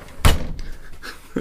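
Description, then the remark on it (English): A studio door is shut firmly, producing a single loud, thudding slam with a brief rattle, followed by a quieter knock a moment later, otherwise quiet. “Stand by, we're shutting the studio door.”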